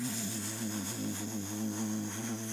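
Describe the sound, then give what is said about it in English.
A steady, loud droning roar from an air hovercraft hovering over swampy waters in the Okefenokee Swamp, like a large propeller engine, with a low harmonic hum and broad airy noise holding constant throughout, no voices. “The hair hovercraft is hovering over all the swampy waters.”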